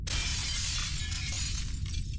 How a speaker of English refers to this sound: The mirror cracked from side to side.